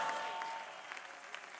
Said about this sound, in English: Clap well.